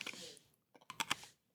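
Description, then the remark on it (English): Wet mouth noises of someone chewing a thick blended drink: a brief noisy slurp, then a quick cluster of sticky clicks and smacks, fairly quiet, with no talking. “I love a drink that you have to chew.”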